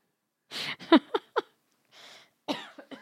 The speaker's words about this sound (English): I've been too busy wiping my nose and coughing and talking about Seinfeld episodes to sip this